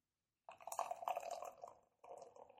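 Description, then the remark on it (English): A pinkish-red drink is poured into a glass in two short bursts, a gurgling, splashing stream that pauses briefly before pouring again. No one speaks. “Well, as I was pouring it, yeah, it looks a little like red.”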